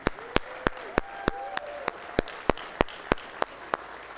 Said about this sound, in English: We should give her a standing applause, because she has been here from the beginning. And yeah, let's give her it up for Heidi.